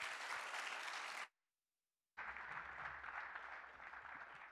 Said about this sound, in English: would you give them a round of applause as we start too?